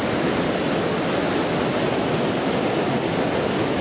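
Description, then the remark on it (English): A steady, dense roar of ocean waves around two boats, one with stabilizers, continuous and fairly loud with no distinct surges or breaks. No voices. “Let's turn up the volume a little bit. I want the congregation to hear the waves.”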